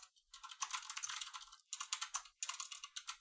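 Rapid clatter of keys on a computer keyboard, typed in quick bursts with brief pauses between them, fairly crisp, with no voices.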